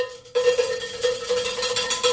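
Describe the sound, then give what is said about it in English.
A bell rings with a steady mid-pitched tone and bright, shimmering overtones, starting abruptly and sustaining with slight pulsing swells. No one speaks. “What's that, the good point, bell?”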